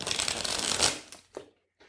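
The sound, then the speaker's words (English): A deck of cards being riffle-shuffled, a dense papery flutter for about a second, then a couple of soft slaps as the cards settle, with no talking. “We did some shuffles”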